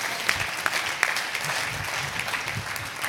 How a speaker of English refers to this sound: Would you clap your hands and say, God's going to multiply it? Multiply it.